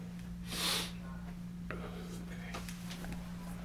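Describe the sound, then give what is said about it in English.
A single short, breathy sneeze bursts out near the start, fairly loud, followed by quieter background noise with a few faint clicks over a steady low hum. “So you get to sneezing, you get to sneezing, huh? It comes out.”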